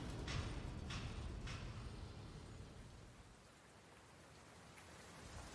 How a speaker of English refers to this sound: Outside the abandoned restaurant, the downpour was heavy and came down so rapidly that vision would become obscured. Through the crackling sound of the rain on the dirt and cement pavement, the sound of intermittent beeps of a truck backing up.